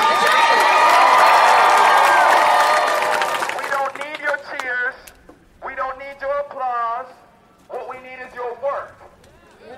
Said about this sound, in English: So we don't need your applause. What we need is your work to continue this work.